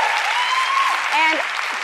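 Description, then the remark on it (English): A crowd of women claps loudly and steadily throughout, with high whoops and cheering voices rising and falling over the dense wash of applause. “Listen to the crowd.”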